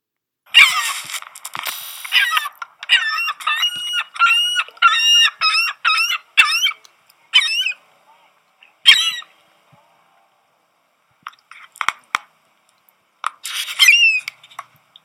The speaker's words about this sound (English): Increased river flows flooded the island so much it almost disappears. The gulls have taken over this space as they wait. Turkey vulture and seagull claim their prize.